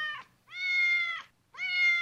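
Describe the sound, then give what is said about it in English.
A house cat meows repeatedly, drawn-out, clear calls, with the tail end of one meow at the start followed by two long ones separated by brief silence. “We tend to see house cats as aloof and independent, mostly preferring to engage in their own kitty business.”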